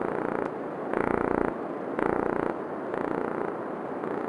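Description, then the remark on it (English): A Gulf corvina fish mating call: a dense, rapid, purr-like buzzing drone that swells into louder bursts roughly every second, steady and continuous, with no voices. “And indeed, these fish have a beautiful, alluring, sexy, and sensual call. And I'm going to play it for you.”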